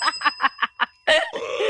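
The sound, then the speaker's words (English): A bell dings five times in a quick, even rhythm, fairly loud, then a burst of laughter and chatter follows right after. “Ding ding ding ding ding. Where's that bell?”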